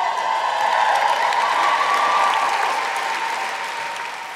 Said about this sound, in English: Just give us a cheer, cast of Amelia.